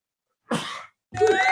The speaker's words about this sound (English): Got to sneeze again, I think. Here it comes.